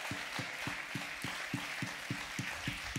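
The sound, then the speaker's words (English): Hand clapping from an audience praising God during worship, a steady, even rhythm of about three claps per second, repeated over a continuous wash of applause-like noise, with no voices speaking. “Come on, let's give the Lord another hand clap.”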